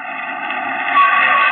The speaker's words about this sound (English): Jump as a car pulls up out in front.